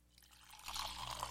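Coffee being poured into a cup: a short, steady trickling stream that swells after a brief soft start, fairly quiet, with no voices.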